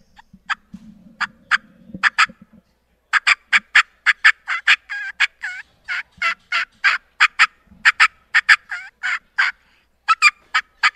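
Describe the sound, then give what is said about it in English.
A rapid series of sharp, clucking turkey cuts made on a turkey call, loud, fires off in irregular bursts for about ten seconds, with no voices over it. “And one thing I found out, Florida turkeys, the Osceola turkey loves cutting.”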